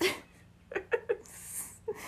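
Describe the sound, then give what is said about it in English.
A voice playfully imitates a small, dainty sneeze, going "achoo": a few quick breathy catches followed by a short hissing burst, fairly quiet with no other sounds. “She just very cutely once in a while goes, achoo.”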